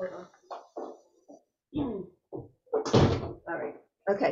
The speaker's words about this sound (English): Wait, I just want to close this door. We're having a roof put on, and they are so loud.